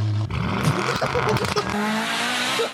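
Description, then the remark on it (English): A car engine hums steadily as the vehicle drives, its pitch rising and falling with revs, over a continuous rush of road and tire noise. “No, that's me driving.”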